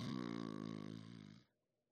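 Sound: voice imitating snoring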